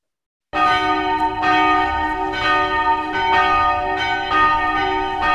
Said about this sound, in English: Shit, what is that, like a 17th century church bell from France and shit?